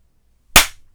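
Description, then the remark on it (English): One sharp hand clap cracks out of silence, a loud bright snap with a quick decaying tail, and no voices around it. “Time for another clap.”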